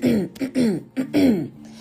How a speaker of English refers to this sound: I gotta clear my throat so I can say that again.